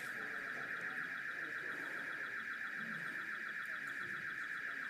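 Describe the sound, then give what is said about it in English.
A door alarm, set off by someone opening a back door, sounds one continuous, steady high-pitched electronic tone that holds unbroken for the whole stretch, over a faint low rumble of background noise. “It's not a fire alarm, that one, is it? That's someone's opened a door somewhere.”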